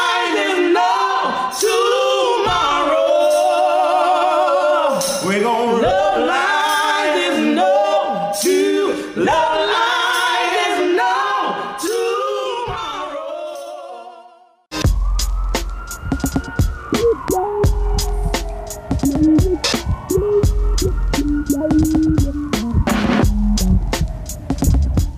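Music by a band with layered singing voices over sustained chords, then after about fifteen seconds it cuts abruptly to a noisy, crackling passage with low rumble and a slowly rising and falling wail.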